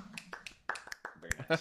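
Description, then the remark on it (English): A quiet, polite golf clap: a handful of soft, sharp hand claps spaced irregularly over under two seconds, with faint voices murmuring underneath. “Hey, golfers clap.”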